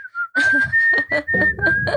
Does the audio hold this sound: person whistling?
yes